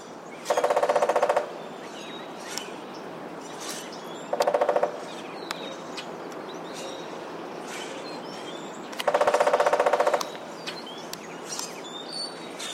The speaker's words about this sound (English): woodpeckers land up on a house on a weather vane or something metal that's nice and hollow and makes a big ring